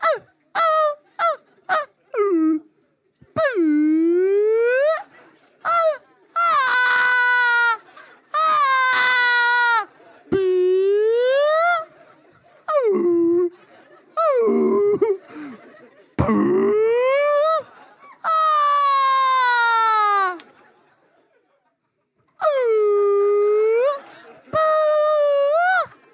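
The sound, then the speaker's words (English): A human voice imitates whale song with a long series of loud, swooping moans and wails that rise and fall in pitch, separated by brief pauses. “Two whales go into a bar. The first whale says, "Ooh, ooh, ooh, ooh."”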